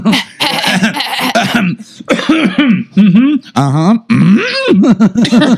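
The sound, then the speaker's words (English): A loud series of deliberate coughs made as a Yoda sound, five or six throaty, voiced bursts in quick irregular succession, some drawn out into grunting, almost vocal tones. “I'm sure everyone is loving all those coughs.”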